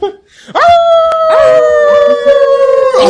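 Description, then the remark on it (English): Voices imitate howling Great Danes in long, sustained, wavering howls that overlap and restart several times, loud, with no ordinary talk. “Oh, no, don't get them howling.”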